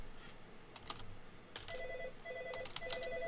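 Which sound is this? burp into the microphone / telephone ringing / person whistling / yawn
telephone ringing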